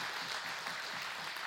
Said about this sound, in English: Can you give the Lord a hand clap of praise if you believe that?